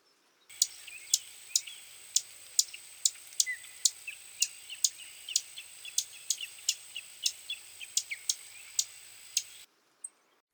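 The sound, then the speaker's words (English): A Savannah Sparrow gives a steady series of short, sharp chip calls, about twenty high notes spaced roughly half a second apart, clear with no other sounds. “Then the Savannah Sparrow.”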